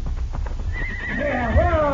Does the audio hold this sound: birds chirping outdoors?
no